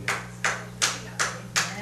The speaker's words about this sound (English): Amen. Hallelujah. Well, that's something to clap your hands for.